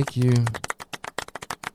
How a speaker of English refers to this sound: It's a close one. Maybe just golf clap worthy.